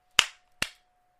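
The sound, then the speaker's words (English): Two sharp hand claps, roughly half a second apart, each snapping bright and fading quickly, over a faint steady hum with no one speaking. “That would have been your time to not clap.”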